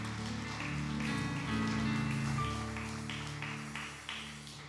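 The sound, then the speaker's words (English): A church audience claps hands in praise of the Lord in a dense, steady patter that lasts the whole stretch without pause, while sustained low musical chords hold underneath. “Come on, why don't y'all give the Lord a hand clap of praise.”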